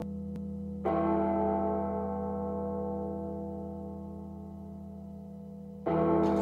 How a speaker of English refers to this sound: the church bells are going off like there's no tomorrow